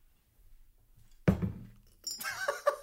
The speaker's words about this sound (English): Are you kidding me? I dropped my earbuds in my glass of Jack Daniels. Oh, God. They're still working.